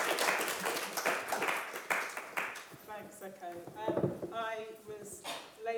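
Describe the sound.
A crowd applauds a panel after a talk with dense, loud clapping for a few seconds, then the clapping fades as a person starts speaking over the last of it.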